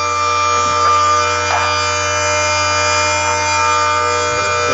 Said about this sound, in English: Oh, no. I think I shredded it. Why would you turn the paper shredder on?